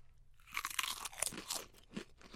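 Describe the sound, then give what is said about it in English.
Crisp crunching of thin, flat potato chips from a bag of Mackey's brand with a Scottish flag on the front, being bitten and chewed: a quick series of sharp, bright crackles with short pauses between bites, fairly quiet and with no talking. “Okay, these are the flattest chips I've ever seen. Yeah, they look like real potato slices.”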